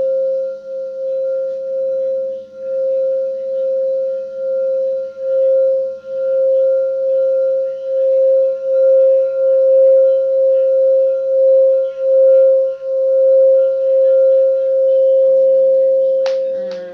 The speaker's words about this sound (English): And just hold here for a minute as we listen to the sound of the bowl, the healing energy of the bowl. Receive that. Breathe that in.